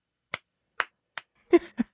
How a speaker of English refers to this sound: That's my slow clap. I just did. That's me.